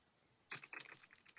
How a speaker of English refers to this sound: That was me typing in my database.